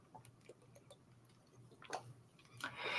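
sipping water

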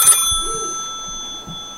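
telephone ringing sound effect

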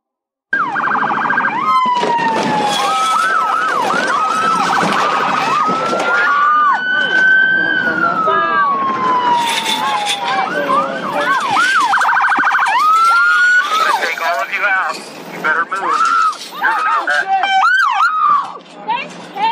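police sirens

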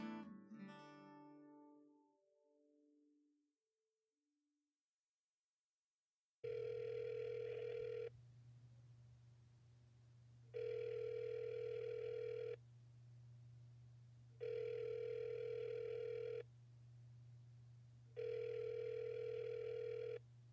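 phone call ringing

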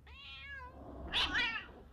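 cat meowing

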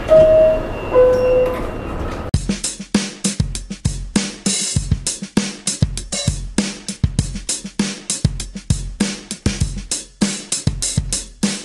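subway train departing

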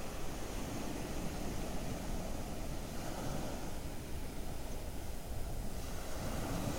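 ocean waves

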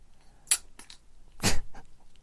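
cat sneezing

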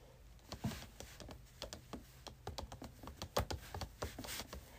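loud computer keyboard typing

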